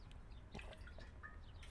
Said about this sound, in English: Hold on. Let me get some water real quick.